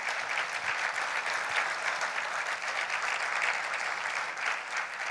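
An audience at an afternoon church service applauds for Jesus, dense overlapping claps forming a sustained, even wash of noise at a fairly constant loudness throughout, with no voices standing out.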